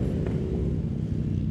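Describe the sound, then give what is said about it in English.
A group of about 14 Harley motorcycles rumbles about 100 yards away, their engines blending into a steady, deep low-pitched drone that holds throughout without a break. No one speaks. “There's like 14 motorcycles like 100 yards away from me, all Harleys.”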